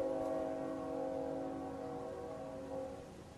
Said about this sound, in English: Now, of course, this is a new moment, and it's got, how I love the sound of a freight train in the distance. Oh, boy.